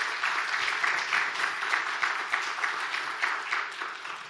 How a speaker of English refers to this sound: Let's give them a round of applause this evening.